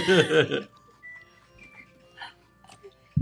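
mobile phone ringtone

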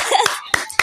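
hand clapping

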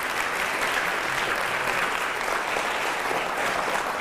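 audience applause

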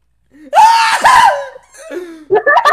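man screaming

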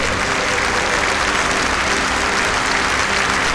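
crowd clapping

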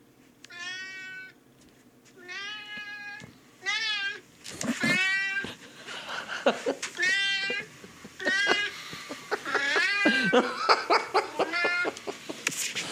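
cat meowing persistently

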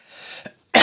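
cough

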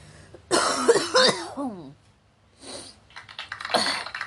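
coughing

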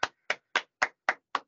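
hosts clapping hands

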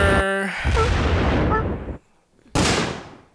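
gunshot sound effect

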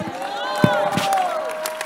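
audience shouting

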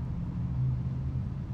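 truck passing

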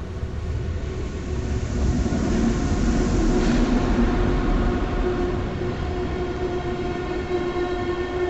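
train rolling along rails

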